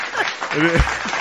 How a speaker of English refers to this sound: we have an audience here, by the way. That's right. And that's the right place to applause.